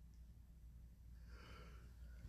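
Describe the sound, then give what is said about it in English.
A soft, drawn-out yawn, a breathy airy exhale lasting about a second, heard quietly over a steady low background rumble with no talking. “Somebody getting tired. It's just a yawn.”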